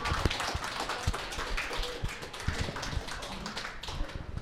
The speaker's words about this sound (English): Yeah, round of applause, yeah.